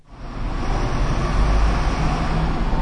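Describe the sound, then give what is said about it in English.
A steady, busy bus station ambience in a building full of people: a continuous low rumble of engines and passing traffic fills the scene at fairly loud, even volume throughout, with no voices standing out. “What I can hear is a bus station, a dirty, filthy, horrid-looking building full of people trying to get”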